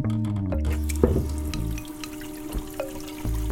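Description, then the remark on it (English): Tap water from a faucet pours steadily into a kettle, a continuous rushing stream whose pitch shifts as the vessel fills, with a few metallic clinks and knocks along the way, fairly loud. “Take a kettle, open the faucet. Watch the water running in a stream into your kettle.”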